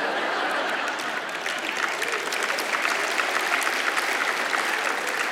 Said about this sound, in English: What are y'all clapping for?